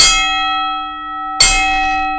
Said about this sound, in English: So this is the bell for both of them.